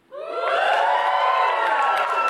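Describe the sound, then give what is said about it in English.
An audience at a church service bursts into a practice cheer all at once, a loud, sustained roar of many voices with high whoops and shouts on top, holding steady for a couple of seconds. “And so as we're getting started, let me just say, I would like to hear a practice cheer. Let me hear what you can do.”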